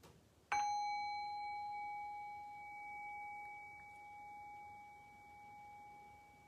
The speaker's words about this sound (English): I'll ring the bell.